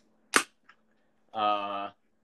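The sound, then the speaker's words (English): A blue Pepsi soda can pops open with one sharp, loud crack and a faint click after it. A short, steady voiced sound follows about a second later. “The open a beer can or a Coke? My Pepsi, yeah.”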